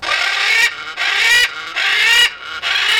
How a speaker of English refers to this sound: The macaw. In Brazil, the bird known as the arara.